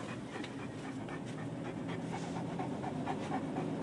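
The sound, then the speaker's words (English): A dog pants steadily and rapidly, quick breathy huffs repeating without pause for the whole stretch, with no voices present, while being taken to get cleaned up. “I am taking the dogs to get cleaned up.”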